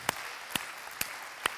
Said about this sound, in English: Are you thankful for what God started in your life? Why don't you clap your hands to the Lord right now? I'm thankful.